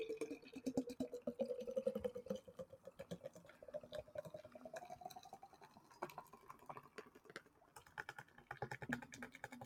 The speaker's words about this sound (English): Wow, it's still pouring. How's that for ASMR? That was some good stuff. That, of course, was the sound of a Guinness being poured, if you could nail that sound effect down.